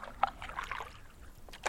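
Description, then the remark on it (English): Kayak paddles dip and pull through water while setting off from Melaleuca Creek and paddling out into the harbour in a strong sea breeze, with soft splashes and trickling drips in a loose rhythm, a sharper splash near the start and another near the end, fairly quiet throughout. “We set off from Melaleuca Creek and paddle out into the harbour.”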